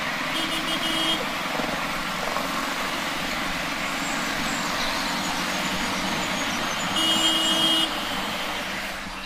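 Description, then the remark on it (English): Steady, loud road traffic roars throughout, with cars and trucks passing, while faint birdsong chirps thinly underneath, barely poking through the noise at a few moments. “The birdsong was still exactly the same level as the previous clip. It was there, but there's a load of traffic in there.”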